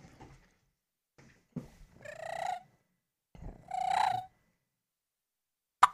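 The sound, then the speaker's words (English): Two short, raspy turkey hen clucks made on a turkey call, fairly loud with a pause between them, followed by a sharp click at the end. “Why don't you demonstrate what a cluck is”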